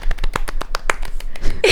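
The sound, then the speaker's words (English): A small group clapping for themselves for under two seconds, a dozen or so sharp, slightly uneven hand claps in quick succession, fairly loud with no voices over them. “We'll clap for ourselves.”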